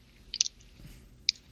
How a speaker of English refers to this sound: Why are you still chewing on that food right now? I think that happened, that started like over 2 minutes ago. Why are you still eating food? It's really weird.